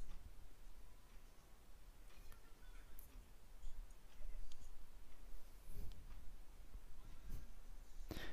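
Faint, quiet clock ticking, soft clicks spaced evenly over a steady low background hiss, with no clear talking.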